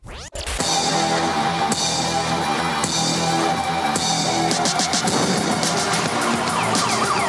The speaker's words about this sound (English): Okay. This is an ad for piracy that ran in the 90s.